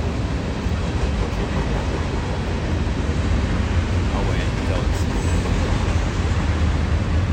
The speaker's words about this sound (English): Sometimes they're very short trains, and sometimes they just go on and on and on and on. And it's usually when I have to be somewhere that I'm just stuck behind it.